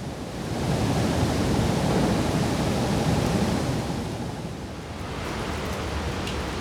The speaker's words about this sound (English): I wasn't expecting the falls to be as active as they usually are in the summer. I thought it would be a lot quieter. But the roaring sounds of the water crashing through the floodgates and into the falls is still just as loud as it is in the summer.